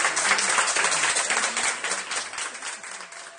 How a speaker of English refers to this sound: To my surprise, they all chewed up to cap me and cheer me on my departure. What he's saying there is hard to make out, but he's describing how all the staff at the Whittington turned out to clap and cheer when he was discharged.